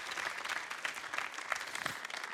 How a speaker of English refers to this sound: So give a round of applause to yourself. That's absolutely amazing.